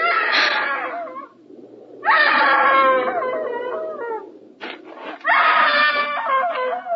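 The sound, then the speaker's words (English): A woman screams three times, loud, each cry a long, high wail that wavers and falls in pitch, separated by brief pauses with a low background hum. “Hey, screaming woman. Why didn't you scream before?”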